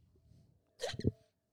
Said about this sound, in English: See, look at God gave you the hiccups.